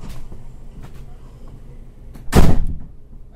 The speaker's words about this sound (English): I will shut my door, but I will leave the recording going